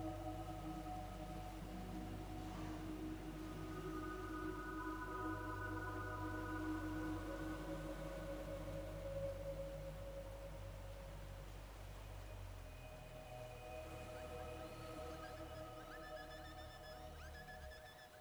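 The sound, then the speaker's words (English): A small pod of dolphins surfing in a boat's bow waves whistle and chirp in sustained, sliding tones over a steady low boat-engine rumble, with a few higher, quicker calls rising toward the end; no one speaks. “And on the way, a small pod of dolphins playfully surf in the boat's bow waves.”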